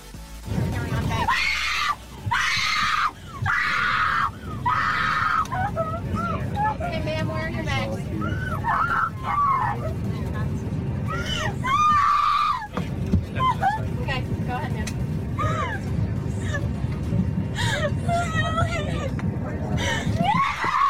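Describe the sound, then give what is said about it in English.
A woman who has just been broken up with on an airplane wails loudly in long, wavering, high-pitched cries that rise and fall, with brief breaks between outbursts, over a steady low cabin drone and some background voices. “This is what it sounds like when someone has been broken up with on an airplane.”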